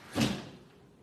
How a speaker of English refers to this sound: I'm going to close this window real quick because I'm pretty sure you guys hear that car. It's so loud in here.